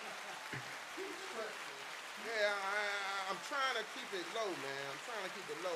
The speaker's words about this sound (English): Listen, round of applause.